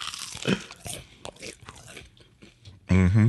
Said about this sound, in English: Not the crunch munch. Crunch, crunch, munch, munch.